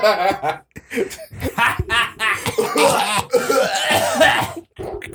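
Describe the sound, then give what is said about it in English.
A voice imitates a woman's raspy, wheezing smoker's laugh that breaks into a fit of harsh coughing and throat clearing, fairly loud, with short bursts tumbling over each other for several seconds. “And when she every time she laughs, it ends with a cough.”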